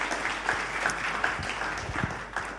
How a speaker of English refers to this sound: and let's give them a round of applause as they are here.